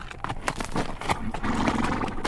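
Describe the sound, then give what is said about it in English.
A weary sorrel mare carrying a rider walks toward San Leon with an uneven clip-clop of hooves, while a low breathy snort or blow rises briefly in the middle. No one speaks. “As the weary horse headed toward San Leon, some guiding angel must have caused the rider to lean forward to pat the head of his sorrel, for at that instant, a bullet ripped through his hat brim instead of his head.”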